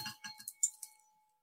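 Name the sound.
bell being struck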